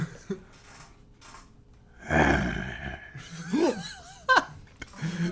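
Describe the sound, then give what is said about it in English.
A person role-playing in a game imitates a monster growl with a raspy, breathy snarl, followed by wavering, strained vocal sounds and sharp gasping breaths. “A growl. Can you RP that growl?”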